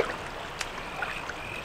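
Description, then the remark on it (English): Steady rushing of shallow, cold stream water with a few soft splashes and sloshes as people wade across the stream, fairly quiet, with no voices. “I'll go first, see if I can find a shallow path so we can wade across.”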